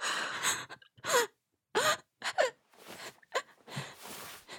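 rapid panicked breathing

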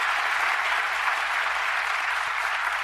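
crowd cheering and applauding

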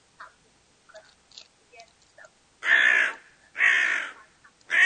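crow cawing

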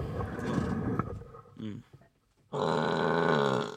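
loud burp

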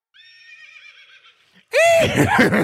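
horse neighing sound effect

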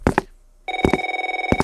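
telephone ringing

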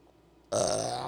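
burp

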